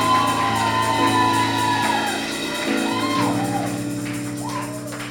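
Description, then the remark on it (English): A large crowd cheers and shouts continuously to welcome a pastor, with rising whoops and yells over a dense, steady roar of voices and scattered clapping, loud throughout. “With a clap and a shout. Are you shouting?”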